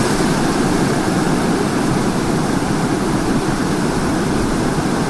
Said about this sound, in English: It's pouring now. I've got zero visibility in this hole.